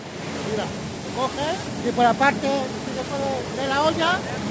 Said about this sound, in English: A water truck follows behind him, spraying the street down.